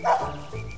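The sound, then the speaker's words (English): A single sharp dog yelp-bark rings out, bright and high, then trails off into a softer, lingering tone. No one speaks. “Finding her scent, the creature looked up to her and yelped out a bark.”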